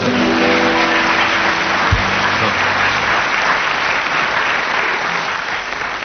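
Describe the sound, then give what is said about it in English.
A loud, sustained round of audience applause for Tim Brooke Taylor, dense and steady throughout, with a brief low hum and a faint tonal drone underneath in the first few seconds. “He hasn't won, but I just thought we'd have a round of applause for him.”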